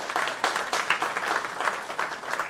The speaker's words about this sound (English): Round of applause.